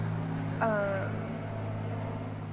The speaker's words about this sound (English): But just learning, whoa, that's a loud plane. Sorry.